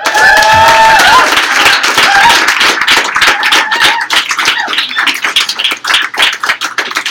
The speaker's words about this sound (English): Our first person off the wait list is our wonderful intern helping out tonight, so not only applaud her for her poem, but for her volunteer work.